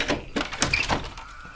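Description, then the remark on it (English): The door of a house is pulled open with a short series of scraping, rattling bursts over about a second and a half, moderately loud, with no voices. “Open the door.”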